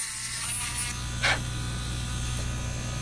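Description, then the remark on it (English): A small electric drill whirs steadily with a low, constant motor hum while drilling eggs to suction out the yolk in a small museum kitchen, broken by one brief, sharper burst of grinding partway through. No one speaks. “After they're done with multiple rounds of color dyeing, students huddle just outside a small kitchen at the museum to watch Chichula drill and suction the yolk out of the eggs.”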